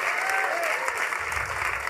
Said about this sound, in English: If that's you and you commit to that tonight, let them hear your hand clap all over this auditorium.